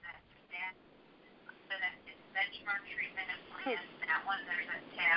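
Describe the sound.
Faint, muffled conversation comes through a narrow, tinny, unmuted phone line during a prayer, with several voices talking over each other in the background, the words indistinct and the level rising and falling unevenly.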